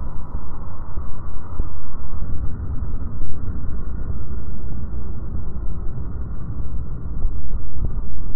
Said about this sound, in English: And here's what he and the other engineers hear when they pick up shipping noise in the ocean.